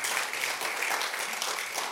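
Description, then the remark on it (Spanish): An audience at a church service claps for Jesus Christ in dense, continuous applause, many hands overlapping into a bright, noisy wash with no pauses for the full stretch. “Dale un fuerte aplauso a nuestro Señor Jesucristo.”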